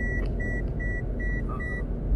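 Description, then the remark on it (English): A car's lane departure warning beeps five times in a quick, steady rhythm as the car crosses the lane lines, sharp electronic tones sounding clearly over a constant low road rumble inside the vehicle. “doing something the car doesn't like. Oh, I'm crossing the lines.”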